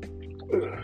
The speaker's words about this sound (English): Excuse my sniffles. Throat clearing and all of that jazz.